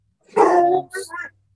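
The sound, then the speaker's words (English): A dog barks loudly: one long, drawn-out bark followed by two shorter, quick barks, with no talking underneath. “The dog's awake.”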